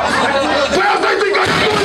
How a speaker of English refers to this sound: He's having people in the crowd sing with him. How? How? With what frame of reference? It's like they're not listening to each other.